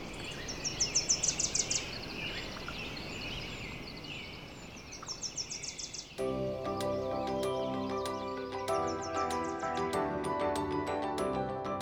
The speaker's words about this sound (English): If you think of Yellowstone, you know, you've got those bubbling mud pools from geothermal activity. You've got packs of wolves which howl. You've got valleys filled with bird song.